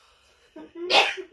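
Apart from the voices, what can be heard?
sneeze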